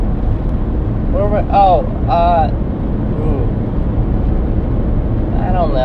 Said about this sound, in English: Wow, this is like the first day I've got in my car